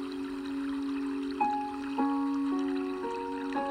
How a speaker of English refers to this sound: And you hear the water off in the distance. It's getting closer and closer